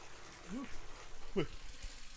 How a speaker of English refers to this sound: Sorry, I know you can't hear me over the steam.